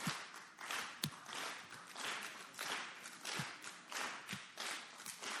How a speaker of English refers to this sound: This might be hard for some of you, but we're going to clap together. So let's see if you can stay on the beat, all right? So y'all ready? Can you do this? All right. 1, 2, 3, 4. 1, 2, 3. Okay.